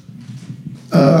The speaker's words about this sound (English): We were trying to get the dog to stop stepping on a bag.